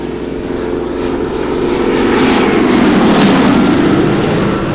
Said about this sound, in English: Those are warplanes. Snyder, what are warplanes doing over New York?